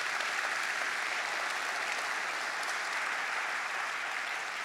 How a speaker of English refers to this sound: Come on, can you give God a hand clap?